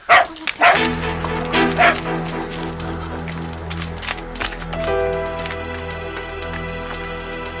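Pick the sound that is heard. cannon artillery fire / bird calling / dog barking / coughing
dog barking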